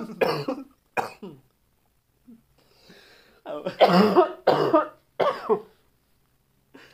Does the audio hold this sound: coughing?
yes